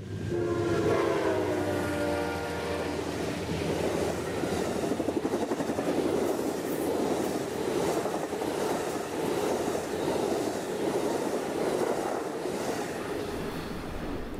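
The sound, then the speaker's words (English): An Empire Builder passenger train running along the Mississippi River rumbles past, its horn blaring for a few seconds at the start before giving way to a steady, loud roar and rattle of the cars. “The train follows the Mississippi River for 140 miles, passing through fertile farmland, riverbank towns, barges, and restored paddlewheel boats.”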